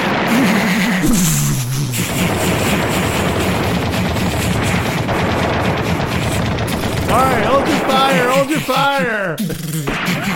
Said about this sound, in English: Before the disheveled Don can reply, the room where his children come and play with their toys explodes in a hail of machine gun fire.